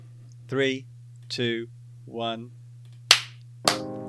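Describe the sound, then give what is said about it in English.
A voice counts down "3, 2, 1" as two people try to clap at the same time. The two sharp single claps land about half a second apart rather than together, the second ringing slightly, over a steady low hum. “We better do a clap. Let's do a clap.”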